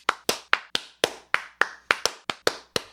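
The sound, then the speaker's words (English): A few people give a slow clap for the Mozart 225 box set, clapping together in a loose, slightly uneven rhythm, about a dozen sharp claps over a few seconds, fairly clear, with no talking. “All right, everybody, slow clap.”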